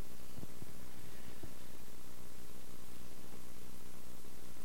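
A steady wash of hissing radio static fills the whole stretch, fairly quiet and unbroken, with faint low crackles and thumps underneath and no voices.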